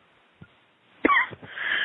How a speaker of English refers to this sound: Take a deep breath. And just cough it out.